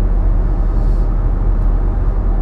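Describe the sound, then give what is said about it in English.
A steady, low rumbling drone fills the space, like road and engine noise heard from inside a moving car, holding an even loudness throughout with no voices. “You know, this is the only time that I'm sitting in my car.”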